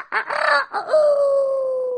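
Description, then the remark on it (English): A rooster crows once, loud: two short choppy syllables followed by a long, drawn-out note that slowly falls in pitch and holds to the end, with no talking. “And of course, the next morning came. The rooster crowed.”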